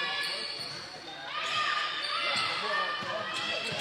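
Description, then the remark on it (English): A basketball is dribbled repeatedly on a hardwood court during a game involving the Lady Hornets, the thuds half-buried under a steady roar of crowd noise that swells louder midway through. “Picking up her dribble,”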